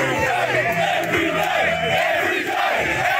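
A large crowd of protesting tradespeople shouts and yells at drivers stuck in gridlock and at media covering the protest, a dense, continuous roar of many voices, with overlapping cries rising out of the steady, loud din throughout.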